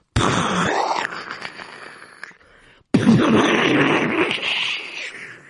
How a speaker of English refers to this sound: It got cloudy, very, very cloudy, and it started to get very windy. And suddenly there was thunder.